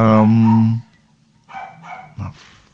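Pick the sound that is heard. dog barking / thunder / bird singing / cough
dog barking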